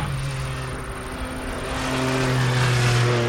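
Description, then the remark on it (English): A Cayman GT4 RS sports car engine revs up, its steady harmonic drone climbing in pitch and growing louder over a few seconds, with no talking. “TestDrive: Cayman GT4 RS”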